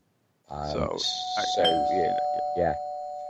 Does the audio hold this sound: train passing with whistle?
no